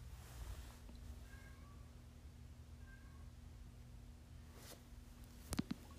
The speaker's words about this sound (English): I'm gonna find out what my cat's meowing about.